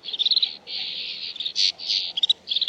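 A snow bunting sings a quick, varied phrase of sweet warbles and rapid trilled notes, with short pauses between bursts, alone with no voices.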